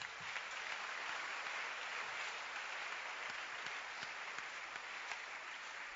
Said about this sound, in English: Keep clapping for them.